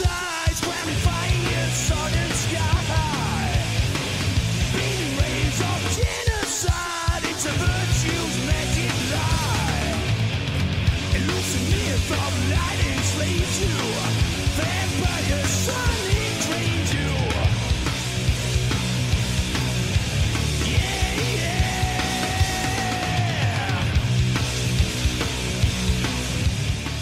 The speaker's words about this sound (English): History in 5 Songs, episode 104, …. Take a listen to this.